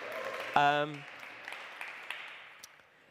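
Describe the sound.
A single loud voice cheers after an announcement of a new site leader, followed by an audience's scattered applause and cheering that swell briefly and then gradually fade over a few seconds.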